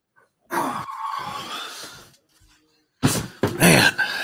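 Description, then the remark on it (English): A dog wanting to be fed makes insistent vocal noises, a long raspy grumbling whine, then after a short pause a second burst of louder, higher-pitched whining yelps. No one speaks. “My dog's like, I want to eat now.”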